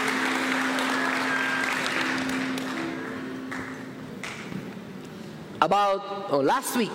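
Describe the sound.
An audience at a Sunday service applauds and cheers for two young people in a steady, dense wash of clapping with scattered whoops for several seconds, fading as a voice begins speaking near the end.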